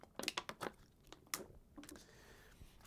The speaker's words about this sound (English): Sip of water.